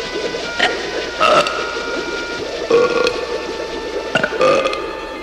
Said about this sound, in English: You gotta burp, Charlie. It's the only way. Attaboy! Burp again!